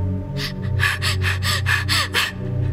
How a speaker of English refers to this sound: She started breathing hard. I put my hand on her arm.